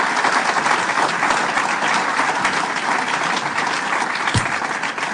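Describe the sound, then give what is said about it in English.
A crowd in Buffalo applauds local leaders, including the mayor, steadily: a dense, even wash of many hands clapping at the same loudness throughout, with no voices rising above it. “And let's give them a round of applause for the great, great work that they have done.”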